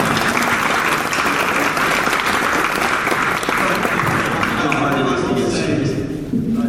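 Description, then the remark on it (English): An audience at a show claps steadily and loudly for everybody who came, in a dense, continuous wash of applause that holds for several seconds, with faint voices mixed underneath before it begins to thin out at the end. “Can we give them a round of applause for everybody that came?”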